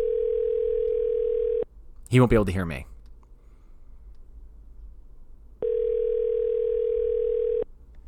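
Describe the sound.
An outgoing phone call's ringback tone sounds twice, each a steady electronic buzz lasting about two seconds with a long pause between, while a man speaks briefly in the gap.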